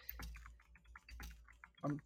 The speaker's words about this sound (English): I'm typing shit. I'm nefarious. What could you be typing at a time like this? The episode description. Saves me time later.